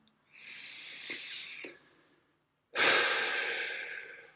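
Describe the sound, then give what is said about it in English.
One slow, deep breath: an airy inhale lasting over a second, a short pause, then a louder, rushing exhale that trails off gradually. No one speaks. “hold on to yourself and breathe.”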